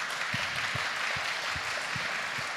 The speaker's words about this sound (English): Clap your hands if you've been following Jesus more than 10 years.